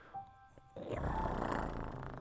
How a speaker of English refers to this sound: Not a growl, that's a purr